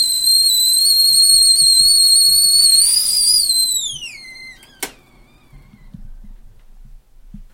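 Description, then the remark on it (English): A tea kettle whistles loudly in a sustained, shrill high tone for several seconds, then the pitch slides downward and fades out, followed by a single sharp click and quiet. “And often has made me feel upset that someone neglected the tea kettle.”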